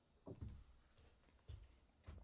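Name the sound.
fart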